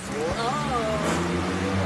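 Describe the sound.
A car engine idles with a steady low rumble amid the general hum of a gas station forecourt in Germany, where stations have green pumps for E10 biofuel, while a muffled voice briefly rises and falls in the background.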